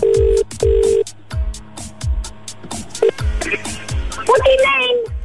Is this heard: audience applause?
no